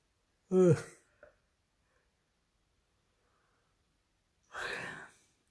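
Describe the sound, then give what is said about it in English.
A person yawns aloud, a short voiced groan sliding down in pitch, then after a few seconds of quiet a second long, breathy exhale like another yawn. “Don't try and yawn quietly so people won't know what's going on.”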